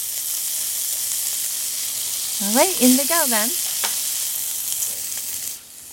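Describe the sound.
Cicadas sizzle in hot oil with a steady crackling hiss that runs the whole length, while a voice speaks briefly over it partway through.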